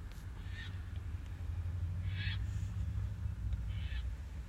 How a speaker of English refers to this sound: Birds.